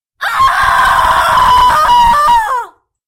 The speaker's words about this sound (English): Across the sea, in a special cell designed by the Brothers of the Order of the Dagger and Cross, a confused demon awakes and, before she blinks twice, knows she has been tricked. Her screams echo throughout the bowels of the abbey.